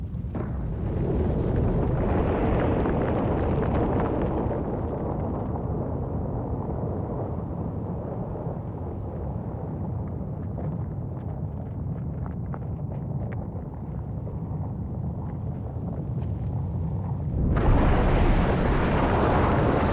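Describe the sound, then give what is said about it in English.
A continuous, heavy low rumble and roar from underwater volcanic explosions as the volcano rises toward the surface, loud, with a sharper, brighter blast surging in near the end. No voices. “The closer it is to the surface, the less pressure there is, leading to a greater magnitude in the explosions.”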